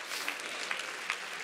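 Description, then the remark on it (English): A crowd at a sermon claps its hands in a steady, dense wash of applause, with a few louder individual claps standing out at a regular pace. No voices can be heard. “If you're glad about it, clap your hands and say, that's for me.”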